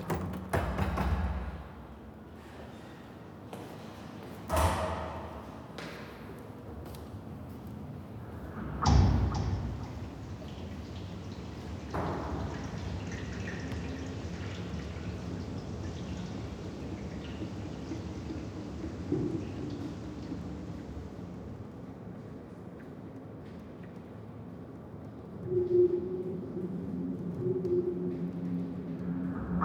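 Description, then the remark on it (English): Rain gently patters steadily against the windows of a stairwell in a telephone exchange in central London by the River Thames, a soft continuous wash broken by a few louder knocks and thuds early on, then settling into an even, muffled drumming with no voices. “The start of this piece is me standing in the doorway and in a stairwell of a telephone exchange in the centre of London by the River Thames, as the rain gently patters on the windows of the stairwell.”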